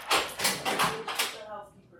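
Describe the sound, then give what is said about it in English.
Four firm knocks on a door in a steady, evenly spaced sequence, each a sharp thud with a brief ring, followed by a quieter fading tail with no talking. “Why would you knock on the door when you know we're in here?”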